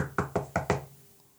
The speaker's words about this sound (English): So I go up and I knock on the door.